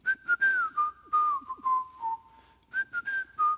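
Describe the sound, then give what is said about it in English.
A single person whistles a lilting melody introducing a version of the story of Robin Hood, the clear pitch gliding and stepping between notes in short phrases with a brief pause before the tune resumes. “And then he starts whistling.”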